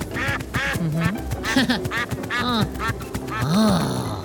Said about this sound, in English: Here comes a gaggle of ducks.